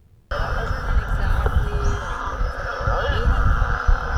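Beluga whale vocalizations recorded with a microphone put in the water from a boat while around the whales: thin squeaky whistles and chirps, some sliding in pitch, over a steady, loud low rumble and hiss that begins abruptly and continues without pause.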